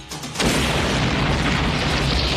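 bomb explosion

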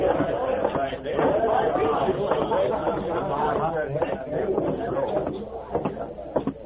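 crowd chatter

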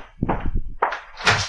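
knocking on a door

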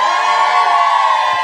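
audience cheering

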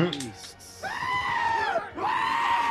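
goats screaming

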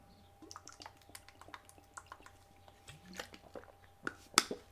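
drinking water

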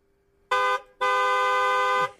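car horn honking

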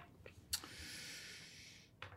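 throat clearing

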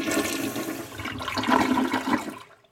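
flushing water

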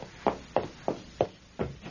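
knocking on a door

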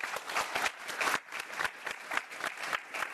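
audience applause

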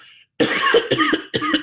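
cough

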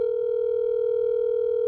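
telephone dial tone

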